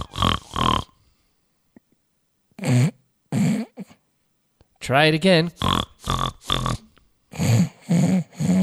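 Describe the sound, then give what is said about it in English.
A person imitates a squealing pig with a series of short, loud, strained vocal bursts, some with wavering pitch. A brief spoken line comes between the bursts. “Well, first you gotta squeal like a pig.”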